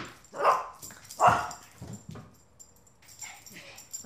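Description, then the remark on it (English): Ponyo, a dog in Nicole Georges' studio, lets out two sharp, loud barks about a second apart, followed by softer whiny whimpers and snuffling sounds. “I'm in Nicole Georges' studio, which is covered in amazing art, and yes, full of Ponyo.”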